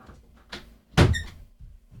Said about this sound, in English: Close the door. Thank you.